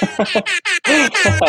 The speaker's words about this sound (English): The air horn. Shameless book plug.